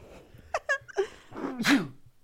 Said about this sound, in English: Bless you. Oh, big sneeze.